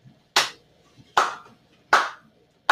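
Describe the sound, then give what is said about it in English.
Three sharp, loud hand claps land at a slow, steady pace with short ringing tails, and another clap starts right at the end. No voices are heard. “Clap and bell.”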